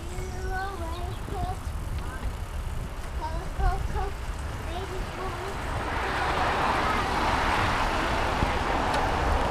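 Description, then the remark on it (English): A car pulls out onto the road, its engine and tyre noise rising and swelling over the last few seconds. Faint voices murmur under steady road noise beforehand. “Just watch that car is pulling out there now,”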